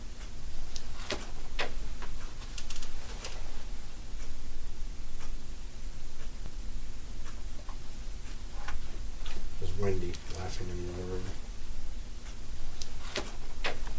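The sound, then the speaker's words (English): A wall clock ticks at a steady, even beat over a constant hiss of room noise, with a brief muffled voice-like sound in the background partway through. “There's also a clock on the wall, which oddly enough ended up helping us time out things because we could follow the beat of the clock.”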